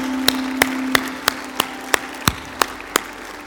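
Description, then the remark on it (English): Claps land in steady, evenly spaced time, about three per second, like a crowd clapping together in rhythm, over a sustained low musical drone, as the crowd gives God a round of applause after a prayer. No one speaks. “Hey, can we just give God a huge round of applause for what he just did in this place?”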